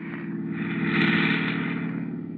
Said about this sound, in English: Up on the road. Get up on the road. There's a car coming.